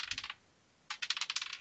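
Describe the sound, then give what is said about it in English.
Dice rolled in a tabletop game, needing fours to pass, clatter across a hard table in two quick bursts of sharp clicking rattles, the second longer and louder, with no voices. “Right, so this is the same dice I was using the weekend. So if I actually pass this, I'll be shocked.”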